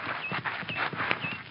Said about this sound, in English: Let the horse get a little bit past so he won't rear up.